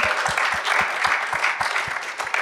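A crowd applauds steadily for a few seconds, a dense, lively wash of clapping with a regular low thumping beat running underneath, close and fairly loud, with no talking.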